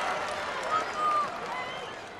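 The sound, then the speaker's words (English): A stadium crowd at Lee Valley Sports Stadium cheers after Baggio's goal doubles Manchester United's lead, a steady, dense roar of many voices with a brief thin whistle cutting through the noise. “How good did that crowd sound”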